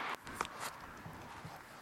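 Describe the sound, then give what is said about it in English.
A few soft footsteps crunch along a rubbish-strewn street in an uneven rhythm, fairly quiet over a steady background hiss, with no talking. “I'm trying to be careful as I'm walking along.”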